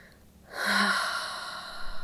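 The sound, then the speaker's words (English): A long, breathy exhale starts after a brief quiet moment and flows out steadily, fairly loud, like a slow release of a deep breath. It is released after a big inhale held at the top during a breathing exercise. No one speaks. “And last big inhale. Six, five, four, three, two, one. Release.”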